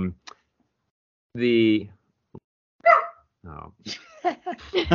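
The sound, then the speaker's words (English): A pet dog barks a few times, with one long, strained bark standing out, followed by people talking toward the end. “the barking dog. Yeah, my dog.”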